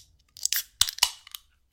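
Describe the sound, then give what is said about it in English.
Beer cans snap open in a quick series of sharp, crackling pops, each followed by a brief bright hiss of fizz. No voices are heard. “Shall we crack them open?”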